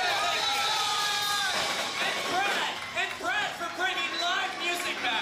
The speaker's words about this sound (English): I need everybody to scream and clap as loud as they can for the sound guy making us sound good.